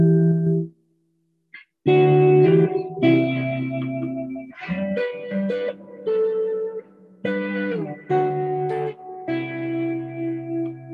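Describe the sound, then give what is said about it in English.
Clean electric guitar chords ring out through effects pedals on a pedal board, giving an ambient tone with shimmering reverb and echo trailing each strum; a slow, spacious phrase played alone, with a short pause near the start. “But and then sometimes I like to mess with different tones, like kind of a more ambient, clean sound.”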